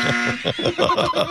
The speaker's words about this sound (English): Yes, to me, it's just a buzzer in a game show on a silly radio show.